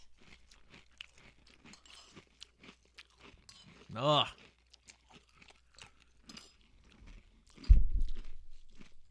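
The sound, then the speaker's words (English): Loud, wet crunching of someone biting and chewing an apple, a rapid series of crisp crackles, with one strong thudding crunch near the end and a brief voiced groan in the middle. “No wonder they like apples.”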